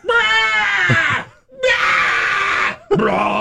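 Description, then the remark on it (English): A voice imitates a herd of sheep bleating at night, letting out three loud, strained, wavering cries in a row, each one harsh and drawn out, with brief pauses between them and nothing else underneath. “But sheep, if you never heard herd of sheep, especially at night, it's horrific because all you hear is, ah! Oh!”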